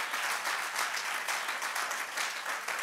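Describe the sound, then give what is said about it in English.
A church audience claps steadily at the preacher's call, a dense wash of many hands filling the space with sustained, even applause, with no voices audible over it. “Clap your hands if you know what I'm talking about, that peace.”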